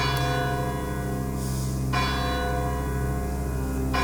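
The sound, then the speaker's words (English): A deep church clock bell tolls slowly as 12 o'clock rings out over London, striking three times about two seconds apart, each stroke leaving a rich, humming resonance that rings on between strikes. No voices are heard. “When 12 o'clock had scarce rung out over London, the knocker sounded very gently on the door.”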